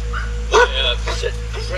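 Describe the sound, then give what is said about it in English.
A dog named Bubba gives a short, sharp bark, followed by softer yips and whimpering sounds over a steady low hum, with faint voices. “It's one of my wife's friends, and let him just say hi so he's not barking at you guys.”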